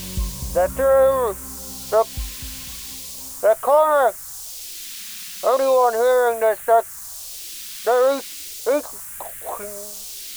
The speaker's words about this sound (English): and you can hear just this. And this is your only evidence of the outside world beyond the wall. Okay? Yeah. There's a lot of interference.